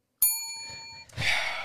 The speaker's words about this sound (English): Get ready to ding the bell, by the way. Oh, yeah, okay. I'll ding that right now.